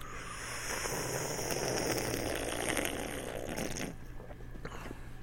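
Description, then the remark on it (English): A loud slurping sound of a drink being sucked in during a Father's Day toast, a continuous hissy rush lasting a few seconds before it cuts off into quieter background noise. “Sounds like you're sucking it in through a vacuum.”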